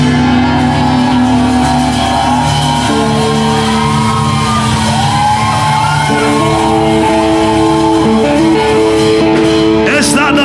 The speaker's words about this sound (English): Come on, somebody. It's not the loudest shout you have.